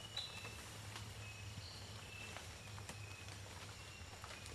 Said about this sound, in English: You hear that noise in the background? It's a nightingale wren. wrens have a lot of different calls, so sometimes it's very difficult to identify the species because they all sound very similar and they have very large repertories.